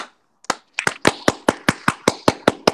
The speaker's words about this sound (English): I got to give him a loud ass hand clap for that because my man Anthony Lanier.